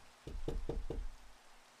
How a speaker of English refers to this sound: It wouldn't hurt to just knock and check on him, would it? I tried to keep my voice even as I knocked on the bathroom door.